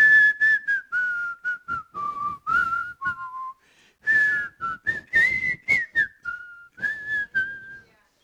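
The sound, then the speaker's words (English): A policeman in England, swinging his stick, whistles a lilting melody, the clear tone gliding up and down through short phrases with brief pauses between notes, fairly loud, with no talking. “And they found a policeman who was swinging his stick, whistling.”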